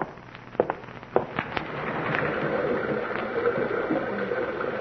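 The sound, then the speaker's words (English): A few sharp knocks and clicks give way to a steady, hissing roar of a big rocky river rushing through a gorge below a cabin, heard through an open window, swelling and holding, churning continuously without any voices. “I've a hankering to hear the big rocky river rushing by down there in the gorge.”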